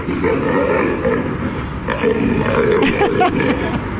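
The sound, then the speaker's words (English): A lion being carried in a woman's arms down a street roars and growls continuously as it freaks out, loud and rough, with deep rumbling bursts rising and falling over about four seconds and no speech. “So this is a woman carrying a lion down the street like it's a toddler with a tantrum.”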